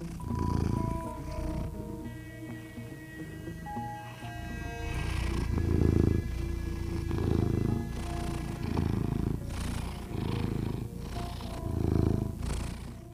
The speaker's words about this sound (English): Come here, Werner. We'll see if we can get his purring on the microphone.